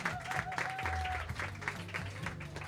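An audience applauds steadily throughout, a dense wash of many hands clapping at an even loudness, with faint tonal sounds and murmured voices underneath.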